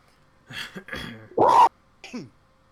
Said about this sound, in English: What was that noise? I don't know. What was that? What? I don't know. That was somebody coughing directly into their microphone, or it sounds like some kind of feedback, something.